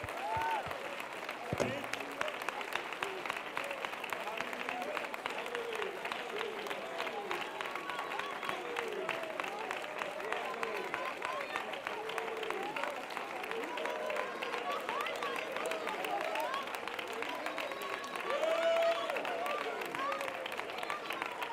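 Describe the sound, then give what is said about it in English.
An audience at a religious service claps their hands unto the Lord steadily and continuously, a dense wash of many hands with no single rhythm, while voices murmur and call out underneath at a fairly even loudness throughout. “Why do you clap your hands unto the Lord?”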